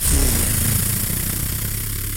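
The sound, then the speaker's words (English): A voice imitates a pull-start engine coughing to life, a loud, steady, low rumbling drone with rough sputtering texture that holds for about two seconds without any words. “He has to start it up. It's got like a shotgun pull start.”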